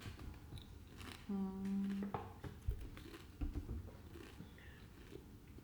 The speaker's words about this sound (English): I hope that you can hear every crunch when we publish this. She's eating Pringles. They're delicious.